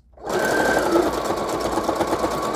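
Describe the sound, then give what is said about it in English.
A sewing machine runs steadily, straight-stitching along the bottom through about four sheets of paper, its rapid needle strokes forming a dense, even mechanical rattle with a thin whine riding on top, starting abruptly and staying loud throughout. “All right, straight stitching along the bottom.”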